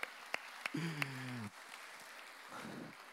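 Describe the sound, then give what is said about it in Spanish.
A few sharp, scattered handclaps ring out at an uneven pace in applause for a blessing, with a low sustained tone briefly sounding beneath them, then a soft rustling murmur near the end. “Démosle un aplauso por esa bendición.”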